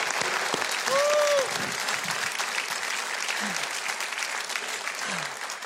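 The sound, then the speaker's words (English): An audience applauds steadily to welcome a performer back, a dense wash of clapping that holds an even loudness throughout, with a brief whistle near the start and a few low murmurs underneath. “Let's give her a big hand of applause.”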